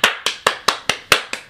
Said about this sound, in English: Round of applause.